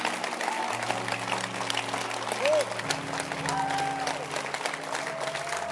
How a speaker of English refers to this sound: Clap your hands.